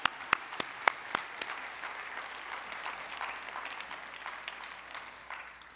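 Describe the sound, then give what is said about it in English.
A standing audience claps together as a clap offering to the Lord, starting with a few sharp, distinct claps that quickly blend into a dense, sustained wash of applause at moderate volume, with no voices standing out. “Well, why don't we stand, give the Lord a clap offering, and let's land the plane.”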